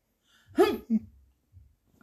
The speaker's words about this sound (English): So I'm thinking he's sneezing. It sounded like a sneeze. He was like, that's a sneeze.